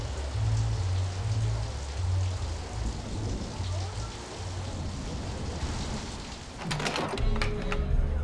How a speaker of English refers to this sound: The man is left standing alone in the rain.